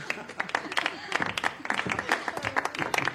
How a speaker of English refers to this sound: Ding, ding. Applause, please.